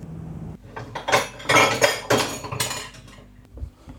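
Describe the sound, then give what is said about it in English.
Metallic scraping and clinking of a tin of baked beans being opened at home, a series of short bright rasps and clanks in quick succession over a low background hum, with no talking. “Here the baked beans are being opened.”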